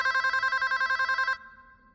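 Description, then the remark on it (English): A telephone rings loudly in a rapid, trilling burst of evenly pulsed tones, clear, then stops abruptly and leaves a faint fading hum. No one speaks. “The phone rings again.”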